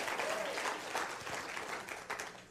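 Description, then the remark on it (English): An audience claps together in a dense, steady burst of applause that carries on for a few seconds before easing slightly at the end. “Give me a football clap in the hand.”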